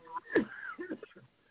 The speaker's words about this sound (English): I had to clear my throat. I'm having a little bit of a coughing fit. I'm sorry.